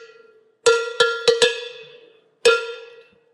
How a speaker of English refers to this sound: Well, hit the bell before we let you go.